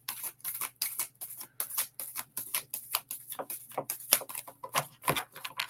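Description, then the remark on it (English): A deck of cards being shuffled, a quick series of crisp flicks and soft taps in uneven bursts, with no talking. “I know, I like shuffling them. And I especially like to see a card just jump right out like that one almost did, but it wanted to come out.”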